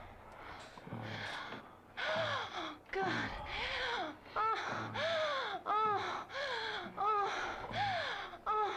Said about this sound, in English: She's just breathing, if anything.